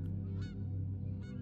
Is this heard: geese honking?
yes